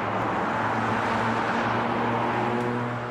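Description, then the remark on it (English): Steady, dense rumble of traffic on Highway 1 on the North Shore just after 9:30 in the morning, with a low, droning engine hum, continuous and fairly loud throughout, with no voices. “This was the scene along Highway 1 just after 9:30 this morning.”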